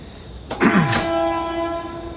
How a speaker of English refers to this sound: Now you appreciate that I live by the train now, right? You hear this, you're like, wow. I didn't realize it was a train. Sorry, we'll just wait for the train for a second.